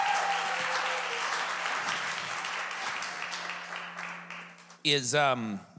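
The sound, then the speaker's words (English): An audience applauds with a dense, steady wash of clapping for about five seconds, tapering slightly, before a single voice starts speaking. “And one of the things that I just want to say is that you can clap. Or there we go.”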